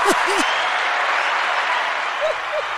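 A crowd applauding steadily for a few seconds, a dense wash of clapping with a few brief voices or whoops rising above it.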